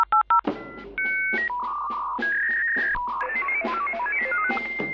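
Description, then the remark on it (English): Three quick telephone keypad dialing beeps, as if calling George Porter, then a run of steady electronic tones stepping up and down in pitch, layered with soft rhythmic thumps. No one speaks. “Let's call him up in the past. Beep, beep, boop, boop.”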